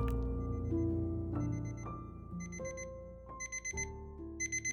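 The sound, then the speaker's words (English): An alarm clock blares, its rapid electronic beeps arriving in short clustered bursts over a steady, droning tone, loud and insistent with no voices. “Charles Ellingson awoke to the blaring sound of his alarm clock.”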